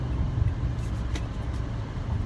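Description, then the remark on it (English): A car merging into traffic: a steady low rumble with continuous road and engine noise and a few faint passing hisses, no one speaking. “Merging the traffic, trying to concentrate.”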